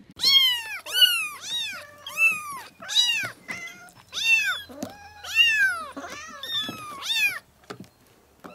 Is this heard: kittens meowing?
yes